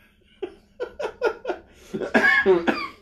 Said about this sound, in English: Oh, this cough.